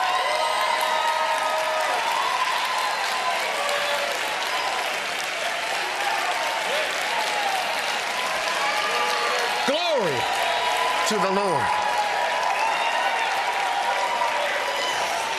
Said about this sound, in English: Like, people are standing and clapping like wild over this.